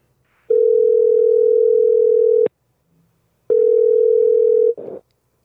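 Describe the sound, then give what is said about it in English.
Telephone ringing tone on an outgoing call to a guest: two long, steady electronic buzzes separated by a pause, ending with a short burst of noise as the line picks up. No one speaks. “we're going to give her a call right now.”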